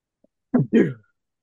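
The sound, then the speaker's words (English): A single sneeze, a short gasping intake followed at once by a sharp, hissy burst, standing alone in an otherwise quiet moment. “That is a yes, sneeze kaboom.”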